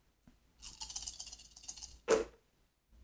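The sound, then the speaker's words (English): Dice rattle and click together for over a second as they're shaken, then land with a single sharp clatter on a hard surface. Fairly quiet, with no talking. “Give me the magic dice.”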